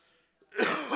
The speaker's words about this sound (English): Sorry, you have to forgive me. I got a cough.